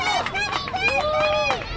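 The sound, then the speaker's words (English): A lively, steady hubbub of children's high-pitched voices mixed with parents cheering from the sides at a Little League game, Angels versus Padres, in Gilbert Lindsay Park, South Los Angeles, on a Saturday afternoon, overlapping calls rising and falling with no single voice standing out. “Dozens of small boys and girls scramble around a well-kept Little League field while parents cheer from the sides.”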